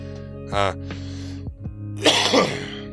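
A person coughs after a strong smoke hit: one short, rough cough, then a louder, harsher burst of hacking coughs a moment later over a steady low hum.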